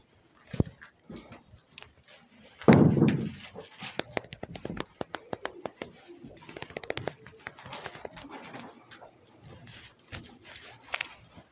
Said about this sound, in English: It's like sword drill day, right? Mm-hmm. Love hearing the sound of flipping pages.